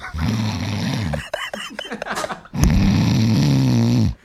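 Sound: person imitating snoring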